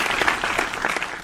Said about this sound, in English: The clapping? Yeah. That I just did? Yeah. That you can't do anything about?